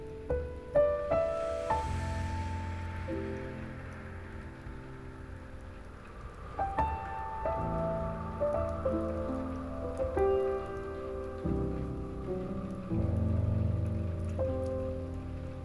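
Soft, steady raindrops patter on a surface, a faint continuous wash sitting beneath gentle sustained musical tones that change slowly; no one speaks.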